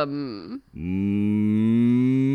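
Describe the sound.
A person imitates a cow, giving two drawn-out moos: a short one that dips in pitch, then a longer, louder, steady moo with no other talking.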